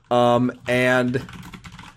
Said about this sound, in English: I'm doing some typing because I'm just hacking into something real. I'm installing the Halal virus.